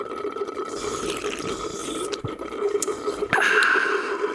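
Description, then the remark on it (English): Wet, sloppy slurping of someone eating applesauce, a steady gurgling hiss broken by a few sharp smacks and sucks, growing louder and fuller toward the end, with no talking. “I can pick my applesauce back up and just, like, we can just do slurping sounds of me eating applesauce.”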